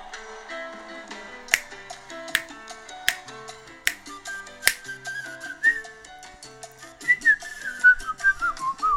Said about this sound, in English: It's impossible not to whistle.